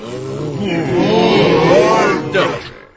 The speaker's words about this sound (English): The male brutes, exhaling sulphur of rut and dung, and ramping in their loose box, faintly roaring, their drugged heads swaying to and fro.